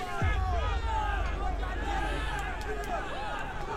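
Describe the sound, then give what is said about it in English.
An angry mob yells, dozens of voices shouting over one another in a dense, continuous roar with a heavy low rumble underneath and no single voice standing out. “There was a bunch of yelling like an angry mob was forming.”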